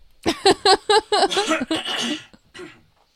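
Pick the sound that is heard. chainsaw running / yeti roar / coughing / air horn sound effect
coughing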